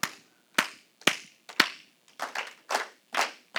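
An audience claps together in a rhythmic pattern, copying the speaker: two evenly spaced group claps followed by a quicker run of four, each burst sharp and slightly ragged from many hands.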